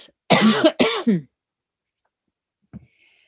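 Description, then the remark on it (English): A loud cluster of three harsh coughs in quick succession, followed by silence and a faint, brief throat noise near the end. “Hang on, we're going to have to cough.”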